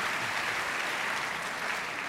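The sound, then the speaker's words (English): Steady audience applause, a dense wash of many hands clapping at once, holding an even, fairly loud level throughout with no voices on top. “Yeah, round of applause, please.”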